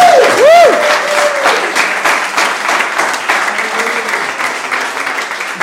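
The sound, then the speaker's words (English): A crowd claps for Jesus during a sermon in a steady, dense, continuous wash of applause, with a brief rising-and-falling tone, like a whistle or cheer, sounding at the very start. “An applause for Jesus.”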